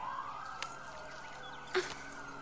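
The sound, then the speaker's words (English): Emergency vehicle sirens wail steadily with a sustained, sweeping tone, punctuated by a couple of brief sharp clicks or bumps and no talking. “I can't think with all these sirens.”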